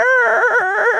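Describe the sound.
A voice imitates a German-engineered Wankel rotary engine with one loud, buzzy, sustained tone, held steady at first and then wobbling up and down in pitch like a revving motor, for about a second.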